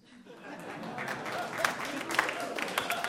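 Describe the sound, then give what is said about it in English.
Applause from an audience swells up after a moment and holds steady, a dense, crackling wash of many hands clapping at once, with faint crowd murmur mixed in. “And for the people out there that did not clap, you need to work on your geek cred, because our title is a famous line by the character Gollum from Tolkien's Lord of the Rings.”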